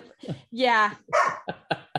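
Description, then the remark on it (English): A dog barks: a loud, drawn-out bark stands out among a few shorter, sharper yelps in quick succession. “It's worth one bark.”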